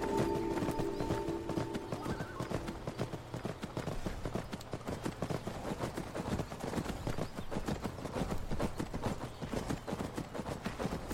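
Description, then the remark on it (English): Horse hooves clip-clop in a steady, brisk rhythm for the whole stretch as a horse is ridden down steps, with a short whinny near the start and no voices. “We're going to ride, since the horses came up these steps, we're going to ride down the steps.”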